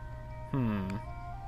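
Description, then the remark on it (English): In a video game, a hanging bell flower grabbed by the player gives a single bright chime that rings out for about half a second, a rich tone whose pitch dips slightly, heard over a steady low background drone with no talking. “It makes bell sounds, because they're like bell flowers.”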